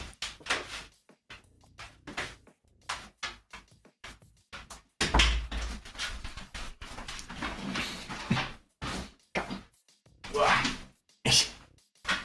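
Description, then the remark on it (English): A dog, Santo, repeatedly rams against a door, making irregular loud thumps and rattles, with a heavier bang midway and a few quieter knocks in between. “I have a dog trying to ram my dog? Door.”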